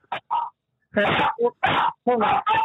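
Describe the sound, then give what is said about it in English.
Loud, excited barking from a dog in the background of a phone call comes through a muffled, phone-quality line: a rapid string of sharp bursts with short gaps, some running together into longer rough yelps. “And there's a dog going bonkers as well in the background.”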